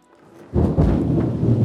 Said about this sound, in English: Wow, did you hear that? That was some thunder.